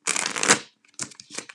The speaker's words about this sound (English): That was a riffle shuffle, if you can tell, with the bridge.